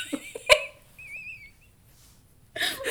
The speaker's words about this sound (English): Me? Did I make a high pitch? Did I ever hit a whistle tone? You did.